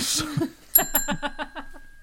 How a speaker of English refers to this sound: Where's that bell? I'm going to need a new bell by the end of the evening.